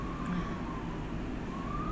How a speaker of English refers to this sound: Got some sirens going off.